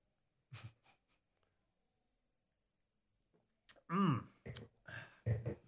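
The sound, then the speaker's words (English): A few short sniffs in quick succession, then a pause before louder breathy noises and a voiced exhale, as someone sniffs a drink during a toast and reacts after sipping. “Have a sniff there,”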